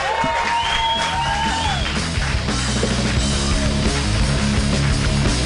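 An audience claps steadily and loudly for several seconds, a dense continuous wash of applause with whoops and cheers rising over it, and a whistle-like rising tone near the start.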